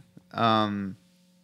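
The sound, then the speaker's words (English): A single loud sneeze with a strongly voiced, tonal burst lasting about half a second, followed by quiet with a faint steady hum in the background. “God damn it. Bless you. Thank you.”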